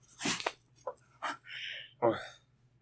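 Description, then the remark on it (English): A dog whimpers, a thin high whine drawn out for a moment between short scuffing and clinking noises, with a brief vocal yelp near the end. “Because, dog, bout number two must happen, apparently, now.”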